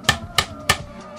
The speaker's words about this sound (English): Just do a bunch of slaps and claps and everything else.